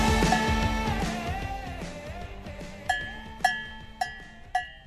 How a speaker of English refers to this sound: More cowbell, more cow.